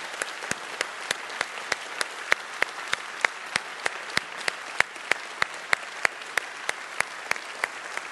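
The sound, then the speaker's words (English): A church audience applauds to share their love and prayers, in steady, evenly spaced claps that keep a regular rhythm for several seconds, moderately loud, with no talking. “And I'm going to ask this church family one more time in an audible way of applause to share their love and their prayers.”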